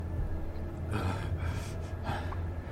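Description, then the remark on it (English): A voice imitates heavy panting: three loud, breathy exhalations in a steady rhythm over a low background hum, with no words spoken. “The big individual panting there.”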